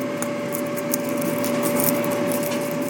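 Several short, crackly crunches of a crisp potato chip made in an air fryer being bitten, scattered over a steady mechanical hum with a fixed drone-like tone running underneath.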